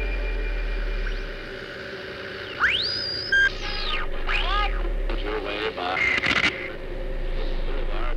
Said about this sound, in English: Shh. Listen, there's a voice hidden in the static.